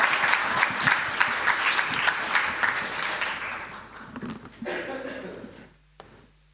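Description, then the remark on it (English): A crowd breaks into steady applause, dense overlapping clapping for several seconds before thinning out and fading, with a few scattered voices underneath as it dies away. “You guys can clap so I can open this.”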